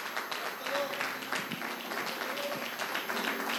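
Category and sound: crowd, audience clapping and applauding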